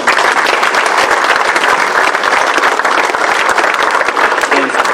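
Sustained audience applause, a dense steady wash of many hands clapping at full volume for the whole stretch, with faint crowd murmur mixed in.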